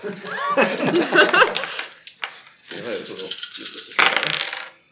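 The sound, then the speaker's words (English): Five stress dice clatter and tumble across a hard tabletop during a tabletop role-playing game, in two busy bursts of rattling clicks, with faint voices murmuring underneath. “And 5 stress dice.”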